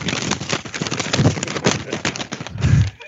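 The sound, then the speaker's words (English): Someone imitates moviegoers crinkling a paper bag of food and snack wrappers during a screening of Rise of the Beasts, making a dense, steady stream of sharp, irregular crackles and rustles for about three seconds, with a couple of louder, lower bursts. “Yeah, it's just like crinkling paper and wrappers for like 15 minutes.”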